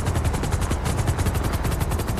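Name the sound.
helicopter flying overhead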